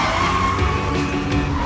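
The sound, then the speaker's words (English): A car peels out with a loud, sustained tire screech over a roaring engine, the squeal holding steady for the whole short burst, with no talking. “Go get in the damn car, and I will, Thelma!”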